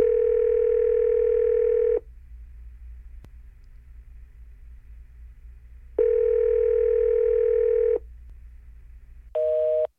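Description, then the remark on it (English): A phone call to Los Angeles rings out unanswered: two long, steady ringback tones about four seconds apart, then a brief higher beep at the end, over a low constant rumble. No one speaks. “Oh, you're ringing.”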